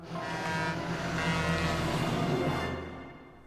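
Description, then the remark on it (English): A truck roars past and runs over a pedestrian dummy out in a valley at about 2 in the morning, its loud, steady engine drone carrying a horn-like tone for a few seconds before fading out, with no voices. “We shot this dummy getting pancaked by a truck out in the valley at about 2 in the morning”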